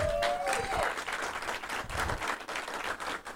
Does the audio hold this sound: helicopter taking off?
no